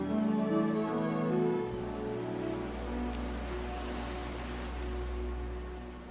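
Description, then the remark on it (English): Ocean surf rolls onto the shore as a steady, deep wash of waves, with a soft musical tone fading out over the first couple of seconds. “And when his son went inside the house, he stayed and he looked out to the waves because he knew his rolling thunder was coming soon.”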